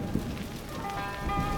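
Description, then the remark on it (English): Steady rain falls in Yunnan during the rainy season, in the wee hours of the morning. It comes down in a continuous, dense patter with drops hitting a surface. No voices, just the even wash of rainfall throughout. “As you can hear, it's the rainy season here in Yunnan.”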